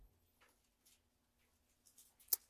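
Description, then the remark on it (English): Soft, papery rustles of pages turning come in scattered brushes across a quiet background, ending with one sharper crisp flick. No one speaks. Heard in a church as a preacher begins reading from 1 John chapter 2. “I hear pages rustling.”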